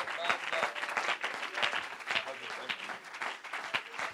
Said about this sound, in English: Clap your hands and let's bless the Lord.